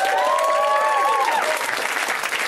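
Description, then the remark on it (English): A comedy show audience applauds the night's comedians steadily and loudly, a dense wash of clapping that holds throughout, with a whooping cheer rising above it near the start. “They can hear you. Let's clap for them.”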